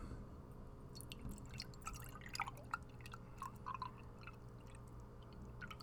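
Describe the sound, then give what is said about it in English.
Milk that has been sitting out for a few hours pours from a freshly opened carton into a cup, a soft trickle with small splashy drips and gurgles over a low steady background hum, no voices. “I've got a cup here, and I got my carton of milk. Open that baby up. Give it a little pour.”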